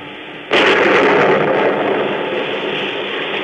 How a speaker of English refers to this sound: It's the story of a simple melody and of a killer who, as our story opens, is fighting desperately and alone against a raging storm off the coast of Maine. The lifeboat he is in is half foundered, and the man's wild rowing does little good.